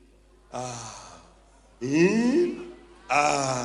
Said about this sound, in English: You can breathe now. Yes. Breathe in.